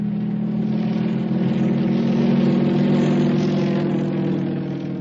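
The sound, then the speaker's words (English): A steady, droning airplane engine hums at a constant pitch for the whole stretch, fairly loud, with no voices over it. “In the air.”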